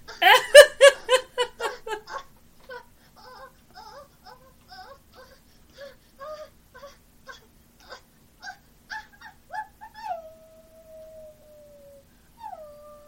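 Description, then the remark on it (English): A woman imitates a dog: a quick burst of loud, yappy barks, then a string of softer whimpers and yips, ending in a long, drawn-out whining howl. “And the dog, she made dog noises.”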